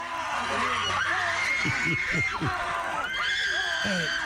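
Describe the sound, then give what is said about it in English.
Several students scream and cry out after being pepper sprayed, in overlapping, wavering high-pitched wails and shrieks, steady and loud throughout, with a dense crowd-like wash of voices underneath. “Just play the screams.”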